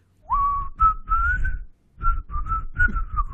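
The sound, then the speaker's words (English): A person whistles a short, bouncy, catchy tune, two breathy phrases of sliding notes separated by a brief pause, with no talking. “And there's a little whistly, catchy tune to go along with it. And it goes like this.”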